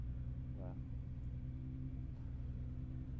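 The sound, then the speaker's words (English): A car engine rumbles steadily on frozen lake ice, a loud, continuous low drone that holds without pause, with a brief faint voice-like sound near the start. “Got an Integra that spun off in front of us, but it looks like he's on his way again.”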